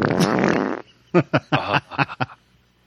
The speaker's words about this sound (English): Where's my fart studio when I need it?